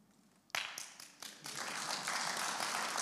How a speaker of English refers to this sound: You guys, you're getting this. One claps, we all claps. That's amazing. Give yourself a clap.